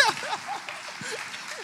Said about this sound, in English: If we can give him a hand clap.